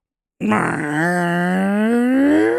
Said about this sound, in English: This one's called a door buster. To be clear, these are fart noises. Yes. Yeah. Alexa just started spurting off fart noises at max volume.